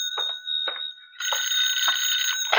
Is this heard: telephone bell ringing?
yes